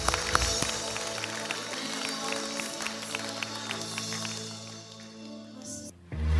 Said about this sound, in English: Now I want to hear a lot of clapping for all the people that raised their hands.